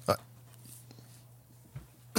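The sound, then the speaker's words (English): Two short, sharp coughs about two seconds apart, with silence and a faint low hum in between. “caught me in the middle of a cough.”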